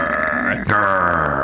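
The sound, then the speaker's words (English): A person growls, a loud, rough, sustained vocal rumble that breaks off briefly midway and then continues. “That was me growling, by the way.”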